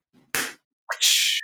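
A loud slap sound effect: a sharp smack, then a second, longer hissing slap a half-second later, with no talking.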